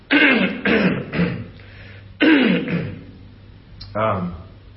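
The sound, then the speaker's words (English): A loud series of harsh coughs and throat clearing, coming in two or three quick clusters with short pauses between, followed by one final rough cough. “I need those cough drops that you offer me every Sunday. I need some right about now.”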